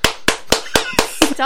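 Hands clap seven times in a quick, steady rhythm, close and loud, with a brief vocal sound creeping in near the end.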